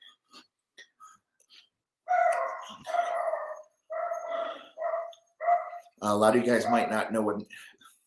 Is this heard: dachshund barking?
yes